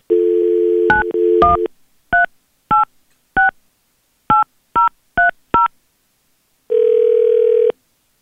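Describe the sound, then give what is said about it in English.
A steady dial tone gives way to a quick series of sharp touch-tone beeps as a radio station, B93.7, dials a listener's phone number live on air, followed by a longer sustained ringback tone. No one speaks. “We're going to call him, see if he'll answer from us, because it'll come up as a radio station.”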